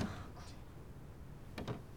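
A door opens with two quick, sharp latch clicks, following a stretch of quiet room noise, with no one speaking.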